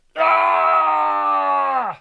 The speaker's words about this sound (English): He yelled to the heavens before composing himself.